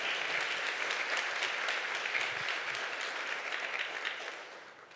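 A church audience applauds loudly, a dense, sustained wash of clapping that fills the space and holds steady before easing off slightly toward the end.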